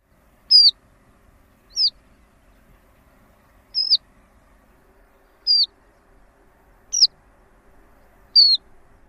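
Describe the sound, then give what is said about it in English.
A horned lark gives six short, buzzy, downslurred alarm calls, the kind given in alarm or when birds are flushed, each a separate high note spaced a second or two apart, clear against a quiet background. “Horned lark's other call is typically given in alarm or when birds are flushed. It's a buzzy, downslored view.”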